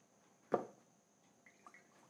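A single sharp splash of milk being poured slowly into a measuring container in a kitchen, followed by a few faint, high-pitched drips trailing off.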